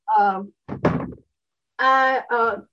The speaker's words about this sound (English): I'll put it in the drawer and close the drawer.